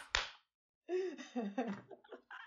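A single sharp, loud hand clap rings out and fades quickly, followed after a short pause by a voice making expressive vocal sounds.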